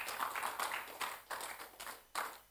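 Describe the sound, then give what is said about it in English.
An audience claps their hands unto Jesus, a dense, crackling wash of many palms with loose rhythmic surges, fairly loud and steady, with no voices over it. “I thought you clap your hands unto Jesus.”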